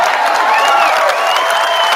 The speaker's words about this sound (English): Him saying it is one thing. The cheer that it elicits from the audience, it's pretty shocking to hear that.